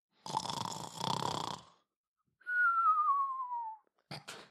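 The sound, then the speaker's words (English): A person imitates a cartoon snore: a long, rough snorting inhale followed by a clear, falling whistle on the exhale, then a short snort starting again. Fairly loud. “That's how people snore, isn't it? No. Yes, they do. In cartoons and that.”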